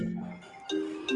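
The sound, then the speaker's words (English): A phone notification chime, a couple of bright, clear electronic tones that ring out one after another over a quiet background, with no talking. “your phone is really loud.”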